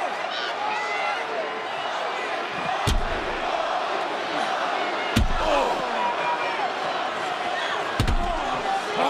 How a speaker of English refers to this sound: Just launched the elbow of Bobby Lashley into the ring post, and now with a steel chair.